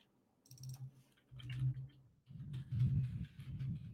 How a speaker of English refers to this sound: Hear my old ass keyboard typing hard as hell.